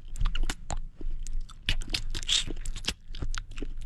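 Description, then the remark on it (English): A voice imitates sloppy, slurping kisses: a rapid, irregular run of wet smacks, clicks and sucking noises, loud and continuous for a few seconds with no talking. “We're well, getting we got all the slops and slurps.”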